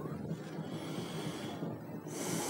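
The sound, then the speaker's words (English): Heavy, raspy breathing, a rough continuous rush of air that turns into a sharper, hissing breath near the end. No one speaks. “So much breathing.”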